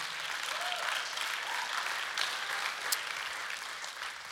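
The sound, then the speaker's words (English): A crowd applauds steadily during a sermon, a dense wash of many hands clapping at an even volume for several seconds, with no voices standing out. “That's worth a clap, yeah.”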